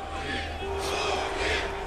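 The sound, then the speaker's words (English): A large crowd cheers at Putin's elaborately staged victory rally in front of the Kremlin after the March 2012 presidential election, a dense, sustained roar of many voices that swells twice, with a steady low hum underneath. “He celebrated with an elaborately staged victory rally in front of the Kremlin.”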